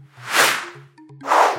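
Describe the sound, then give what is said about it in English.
Two swelling whooshes of Kamadeva's love arrows being shot sweep past about a second apart, loud and airy, over a faint, steady low musical tone in the background. “These are my love arrows, Coco. When I gently shoot them, they make everyone feel a bit more loving and kind.”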